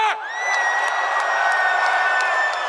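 A large home crowd in Sydney, Australia roars with loud, sustained cheering, high whoops and whistles cutting through a steady wall of noise, with scattered claps popping underneath, after boxer Tim Tszyu stops Tony Harrison in round 9.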